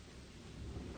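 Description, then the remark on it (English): A thunderstorm with heavy rain pouring down steadily, a deep rumble of thunder rolling underneath and growing louder toward the end. No voices. “He gestured out into the storm, coming down harder now.”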